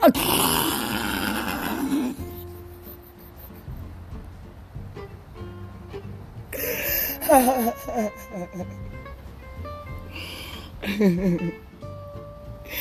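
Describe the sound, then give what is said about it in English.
A voice imitates a dog's rough, throaty growling in three bursts: a long one at the start, then two shorter ones later, with quieter tonal background sounds between them. “And the other dog said, the rest are haters, don't even bother.”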